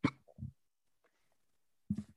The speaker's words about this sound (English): And like my hiccups. Like they were gone for because I had them earlier and they were gone when I was in practice. And then I got out of the shower and I couldn't stop.